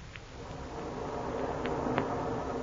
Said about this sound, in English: What is that strange roaring sound I hear? That, my dear Fury, is the waterfall on the other side of the temple.